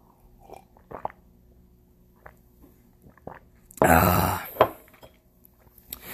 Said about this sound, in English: I'm going to take one more sip of coffee here.